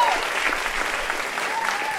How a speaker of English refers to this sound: can we just give another round of applause to Robin Gell